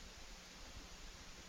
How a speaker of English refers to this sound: Trying not to be bothered by the hiss, though.